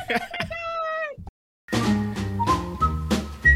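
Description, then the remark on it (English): A short jingle introducing the Live Dudes segment Whistling Through the Graveyard opens with a sliding tonal phrase, falls silent for a beat, then bursts into a bright, full instrumental sting with a whistle-like melody riding on top. “Live Dudes presents Whistling Through the Graveyard.”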